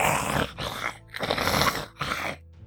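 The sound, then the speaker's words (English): A voice imitates a snarling, dog-like growl in three rough, raspy bursts separated by brief pauses. It is fairly loud, with no words spoken. “As you turn the corner, as you get to the end of the corner, you see something in the center of the room. And it starts growling at you.”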